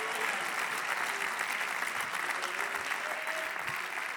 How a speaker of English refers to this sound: Come on, clap with me and say, we believe, oh God.